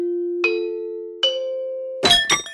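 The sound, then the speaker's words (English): A bell rings out with a steady, humming tone, struck twice at slow intervals, then a quick flurry of brighter, jangling strikes closes it. No one speaks. “Brought to you by Bells.”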